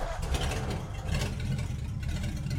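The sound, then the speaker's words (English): A car engine catches and runs with a steady, throaty rumble, holding an even idle for a few seconds with no one speaking. “The starter in my car won't even turn the motor over.”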